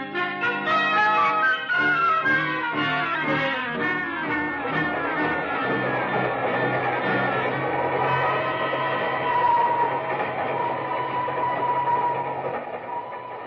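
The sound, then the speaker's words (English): A train bound for Kugama runs steadily on the rails, a loud, continuous rumble and clatter that stays unbroken from start to finish, with no voices. “What a cattle train.”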